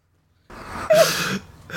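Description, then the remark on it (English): A single sneeze: a short breathy intake swells into a loud, hissing burst that trails off into a softer exhale, with no talking. “God bless you”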